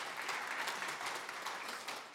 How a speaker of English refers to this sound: So that's worth clapping about, yeah.